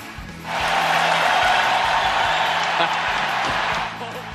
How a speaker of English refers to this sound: The standing ovation lasted more than a minute, and despite now playing for their biggest rival, Kane getting another massive cheer when he scored the game winner in overtime, giving the Red Wings a 3-2 win.